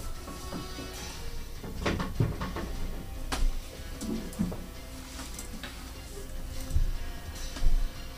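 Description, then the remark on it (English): Soft wooden creaks and muffled knocks as a door is handled and swung open, with a few scattered clicks and thumps spread over several seconds, quiet. “Okay, so opening the door.”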